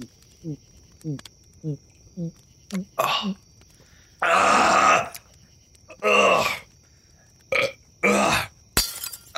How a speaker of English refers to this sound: God! Dear Lord, that was a 40 you just chugged and smashed off your fucking head.